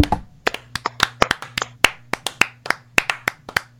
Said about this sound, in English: As we always do, we need to clap it out. We have our winner.